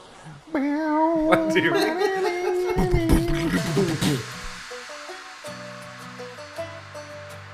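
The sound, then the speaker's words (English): A loud, wavering tone comes first, then a run of separate plucked acoustic guitar notes, moderately quiet, over a steady hiss of background noise. “like plucking an acoustic guitar.”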